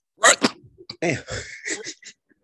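A sharp sneeze bursts out near the start as a double-pulsed blast, followed by a stretch of muffled voiced sounds.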